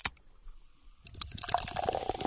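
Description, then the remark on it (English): After a second of quiet, a drink is poured into a glass, a steady splashing stream whose gurgling tone rises slightly as the glass fills. No voices. “That's a drink.”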